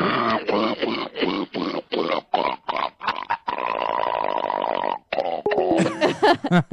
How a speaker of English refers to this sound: It's such a fucking horrible cough.